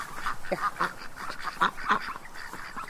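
Several ducks quack in quick, overlapping bursts, a raspy mid-pitched chorus of short calls repeating irregularly at a moderate level with no speech, as people come to feed them.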